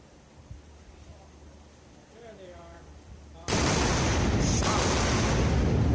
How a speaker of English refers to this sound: Double sonic booms. That is a great image, and the sound of the pair of double sonic booms is totally wild.